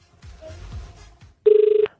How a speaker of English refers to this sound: Well, it's definitely ringing, and I can hear it, and it's probably the loudest of the payphones so far.